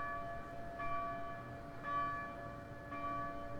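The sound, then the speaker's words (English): The Nassau Hall bell at Princeton University tolls three times at slow, even intervals, each deep resonant strike ringing into the next, with no voices. “The Nassau Haw Bell.”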